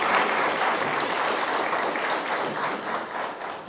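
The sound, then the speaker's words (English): An audience at the third annual Dr. Martin Luther King Jr. breakfast applauds young people steadily, a dense wash of many hands clapping at once, holding a fairly even loudness for a few seconds before easing slightly at the end. “So please give those young people another round of applause.”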